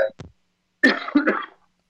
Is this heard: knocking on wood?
no